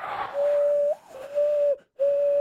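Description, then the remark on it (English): A person whistles a bird call through cupped thumbs: a hollow, steady, dove-like tone held in three long notes with brief breaks, loud, starting with a breathy rush. “Like, there's whistling through your thumbs. Have you ever whistled through your thumbs? Oh, dude, like the bird call thing?”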